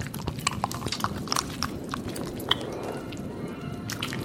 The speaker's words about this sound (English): Let me pour us a little eggnog to celebrate.